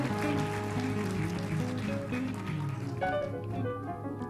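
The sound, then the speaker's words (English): An audience claps steadily for about four seconds, a dense, even patter of many hands, with sustained musical tones humming underneath and shifting partway through. “Let's welcome them again by giving them a big round of applause.”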